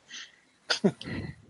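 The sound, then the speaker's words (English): A single sneeze: a brief breathy intake, then a sharp double-burst explosion of air trailing off into a short, rough exhale. No talking over it. “Bless you.”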